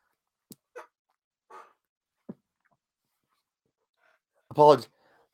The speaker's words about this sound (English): Apologies, had to sneeze there.